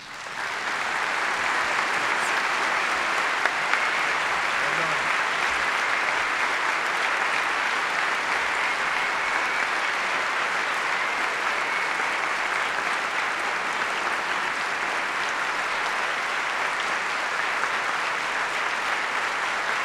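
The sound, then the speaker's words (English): A large audience in the packed sanctuary of Westminster Church, choir loft full, claps continuously for Barbara Brown Taylor, a dense, steady wash of applause that holds at an even, loud level throughout, with no voices rising above it. “To those of you listening on the radio and applauding at home or at your office, you're joining a packed sanctuary here at Westminster Church listening to Barbara Brown Taylor.”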